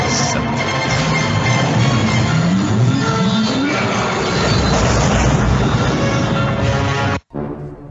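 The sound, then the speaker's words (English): An engine powering up: a loud, dense mechanical roar with a whining tone that climbs steadily in pitch, holding for several seconds before cutting off abruptly near the end. “Yeah, that was an engine powering up.”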